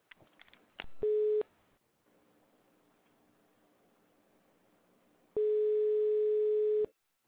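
A telephone busy signal beeps loudly on the line after a call was disconnected, a short tone followed after a few seconds of faint line hiss by a longer one, with no voices.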